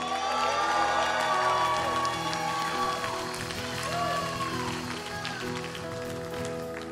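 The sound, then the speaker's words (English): A large crowd erupts in sustained cheering and shouting praise to God, many voices overlapping in loud, continuous whoops and praise that hold steady for several seconds before easing slightly. “If you're thankful for the presence of God, can you give a shout of praise right now?”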